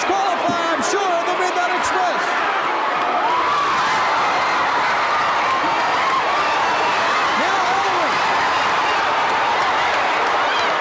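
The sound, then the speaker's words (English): A roaring wrestling crowd cheers continuously and loudly during a World Tag Team Championship match with all four wrestlers in the ring, with a dense wash of shouting voices, plus a few sharp thuds and slams early on before the noise swells and holds steady. “Man, that crowd is fired up.”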